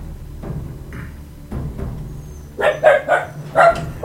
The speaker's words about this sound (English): A dog is barking.